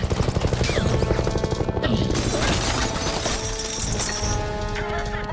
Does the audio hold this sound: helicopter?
yes